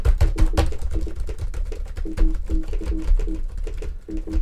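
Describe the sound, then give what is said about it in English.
Rapid, uneven clatter of many MacBook Air laptop keys being struck at once, a dense stream of sharp clicks and taps with a low tonal hum underneath and no talking. “What if I like hit lots of keys on my keyboard?”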